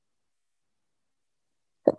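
A single abrupt sneeze blasts into the microphone after nearly two seconds of silence, a short, loud, muffled burst with a heavy low thump and no talking.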